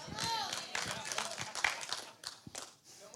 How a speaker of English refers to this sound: Six people clap. They're like, I don't know if we should clap on the Trump part or not.